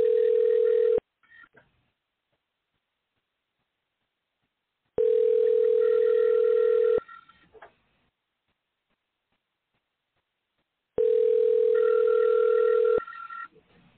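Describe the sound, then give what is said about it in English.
An outgoing phone call to a guest rings three times, steady electronic ringback tones of one to two seconds each, separated by long silent pauses, clear and fairly loud with no voices. “Let me try to call the guest one more time.”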